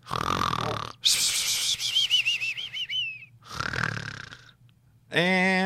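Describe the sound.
A person pretending to sleep fakes loud snoring in several exaggerated bursts, with rasping inhales and a whistling, wavering exhale between them.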